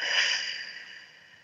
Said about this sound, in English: So take a moment and take a deep breath in through your nose, out through your mouth. Like through a straw. Beautiful. Take another breath. See how big you can make your belly, in fact.